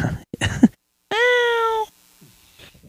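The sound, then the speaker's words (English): A single long, drawn-out cat meow rings out clearly, preceded by brief murmuring voices, with quiet background sounds trailing after. “And we're back from the cat break.”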